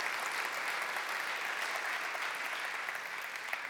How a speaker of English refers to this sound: You should clap, right?